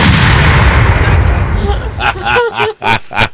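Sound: cannon firing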